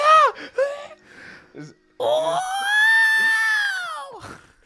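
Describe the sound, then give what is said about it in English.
A voice imitates the distant scream of a person falling into a whirlpool: a few short yelps, then one long, loud, sustained wail that holds its pitch before sliding downward and trailing off at the end. “You just hear a distant scream in the back as the person that was like slowly descending just falls in the whirlpool.”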